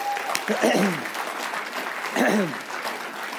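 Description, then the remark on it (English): Steady applause from an audience as panelists come up to the stage, dense and continuous, with a couple of brief voices or cheers rising over the clapping. “Let's give them a massive round of applause as they come.”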